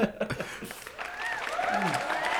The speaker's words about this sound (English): I don't have any dynamic sounds on my soundboard for that. Just a round of applause would do.